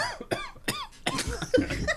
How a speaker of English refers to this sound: I'm coughing with excitement.